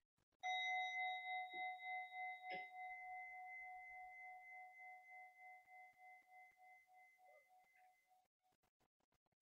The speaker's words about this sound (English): And okay, so I'll just hit the bell to give us that wonderful beginning of a meditation, you know, the bell.